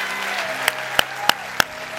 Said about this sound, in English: Come on, all over the house. Let's clap real big. Come on, all over the house. Let's clap real big.